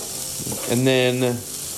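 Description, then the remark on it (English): Vegetables sizzle in hot olive oil with a steady hiss, while a stirring utensil briefly scrapes out a squeaky, tonal whine partway through. “And then mixed it up with... Let the water steam out”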